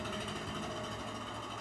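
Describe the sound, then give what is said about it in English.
A small engine drones steadily with a buzzy, rattling tone and layered harmonics, holding an even loudness throughout with no voices. “That's not even a leaf blower. What is that?”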